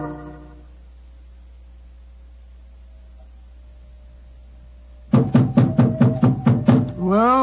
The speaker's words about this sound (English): We must have been knocking here for 5 or 6 minutes.